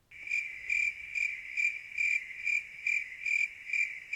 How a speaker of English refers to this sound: That's where those crickets come in.